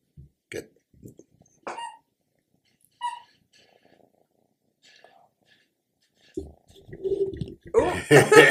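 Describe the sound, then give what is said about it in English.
A pet named Kirby purring: a low, steady rumbling purr swells up in the second half and grows louder toward the end, after a few brief, scattered murmurs and small noises. “That's the purr.”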